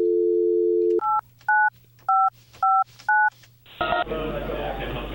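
A steady dial tone cuts off, then five short two-tone keypad beeps sound in an even rhythm as a phone number is dialed to call back a scam caller, followed by a burst of broad noise like a line connecting.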